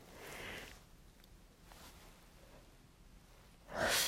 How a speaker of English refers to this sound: I keep yawning. I should go to bed.